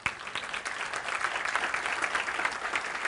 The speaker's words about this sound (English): The return of Jesus, listen, and perhaps you will agree by round of applause. I believe that Jesus Christ could come at any moment.